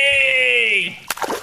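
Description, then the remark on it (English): A long, steady high-pitched vocal cry breaks off, then a sudden splash as a person is dunked into fountain water, followed by brief churning and sloshing. “Dunk me again, please!”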